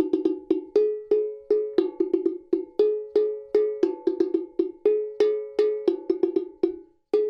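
An Ogene metal bell struck in a quick, steady rhythm, alternating between two ringing pitches. Each bright clang decays briefly before the next, played loudly with no voices.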